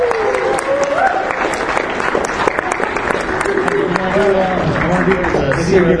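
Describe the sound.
An audience applauds steadily for several seconds for a volunteer called up from the audience, a dense, loud patter of many hands clapping, with cheering and voices mixed in underneath.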